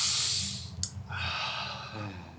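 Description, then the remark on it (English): Slow, deliberate calming breaths: a long airy inhale, a brief click, then a long, steady exhale, fairly loud and unhurried. “Hang on. Breathing. We agreed this was our calm down phase, so.”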